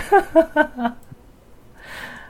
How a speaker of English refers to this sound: You cough finish already? You still coughing now?